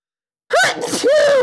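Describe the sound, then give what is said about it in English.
A single loud sneeze bursts out of silence, starting with a sharp rising intake and ending in a forceful, voiced exhalation. “These bees are so sick that I'm sneezing.”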